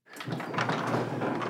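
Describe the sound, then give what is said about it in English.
A garage door in Monument, Colorado rumbles open with a steady, broad mechanical grinding that starts abruptly and continues at an even, fairly loud level throughout. “19-year-old Declan Kavanaugh is straight-up giddy opening his garage door in Monument, Colorado.”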